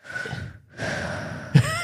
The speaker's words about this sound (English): Okay, stop. You can stop breathing now.